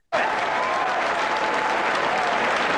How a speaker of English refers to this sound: Moving fast. The crowd way into it too.